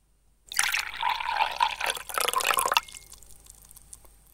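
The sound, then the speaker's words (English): Liquid is poured live into a glass next to a microphone, amplified, a steady splashing gurgle with bright ringing tones that lasts a couple of seconds, then stops abruptly, leaving a faint settling fizz. “Live for an amplified pour into the glass next to the microphone.”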